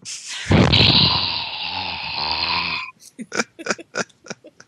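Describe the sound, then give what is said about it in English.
A long, loud, raspy exhale rumbles right up against the microphone for a couple of seconds, heavy and theatrical, followed by a quick run of short, choppy bursts of sound. “somebody just breathed, but I don't know if it was … or …”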